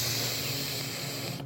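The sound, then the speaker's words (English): A voice imitates two enormous sniffs of extra-strong poppers from a bottle up both nostrils: one loud, sustained breathy hiss lasting over a second with no break, then it stops abruptly. “He took the top off and he put the bottle up, and the smell kind of hit the room, and he took these two enormous sniffs up both nostrils like this.”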